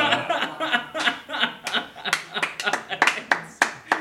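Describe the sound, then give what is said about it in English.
A small audience at a Christmas-themed show claps for a guest's perseverance in an uneven, scattered rhythm of sharp hand claps, with chuckles and laughter mixed in underneath. “We're applauding your perseverance.”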